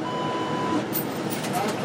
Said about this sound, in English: As we near the Aurora Metro Center station, the last stop on our bus ride,